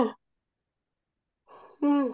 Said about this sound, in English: I'm so sorry for anybody listening to us in the car or on speaker, because I'm just yawning my ear off. I'm sleepy, so I'm about to get off of this episode.